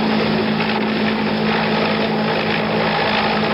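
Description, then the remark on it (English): A helicopter at Tan Son Nhut Airport in Saigon, during the evacuation of American nationals, drones steadily overhead, its rotor and engine producing a loud, continuous roar with a low, throbbing hum running beneath a broad wash of noise, and no voices. “But the buses have to be abandoned when helicopters at Tan Son Nhut come under fire”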